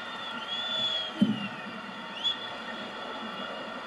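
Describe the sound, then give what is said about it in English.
A steady wash of wrestling arena crowd noise roars throughout as the crowd stands on its feet cheering during a match between the Hulkster and the Warrior, with shrill whistles gliding above it and a couple of brief sharp thumps cutting through the din. “And as you can hear, the crowd is totally on their feet still.”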